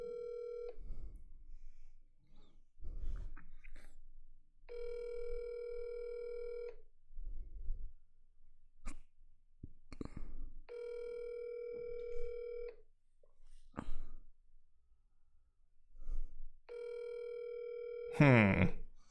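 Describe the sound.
A phone call rings out over a speaker: a steady electronic ringback tone sounds four times, each about two seconds long with pauses between, and muffled voices and clicks fill the gaps.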